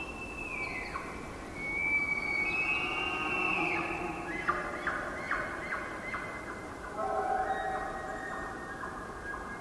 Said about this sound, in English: And if we were taking this hike in the fall, we would hear the bugling of the Roosevelt elk.